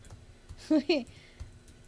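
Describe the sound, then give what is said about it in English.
A few soft, scattered keyboard clicks from someone typing on a computer, with a brief voiced murmur in the middle breaking up the quiet tapping. “I kept typing in complications.”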